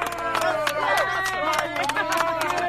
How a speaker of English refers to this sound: And they clap him on, cheer him on, and give him the courage to go into that school, give him that confidence, because that's what a father's role in a lot of ways is.